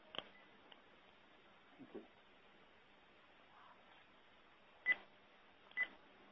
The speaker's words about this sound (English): I heard another beep. Was that me? I think I heard that one too.